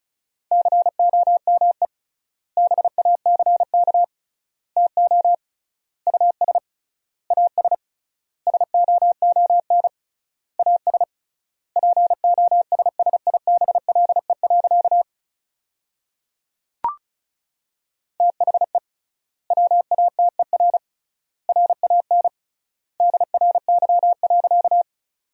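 Rapid Morse code beeps at about 35 words per minute with triple word spacing, sending sentences built from the top 500 words: a steady mid-pitched tone keyed in quick dots and dashes, grouped into words separated by short silences, with one faint click partway through.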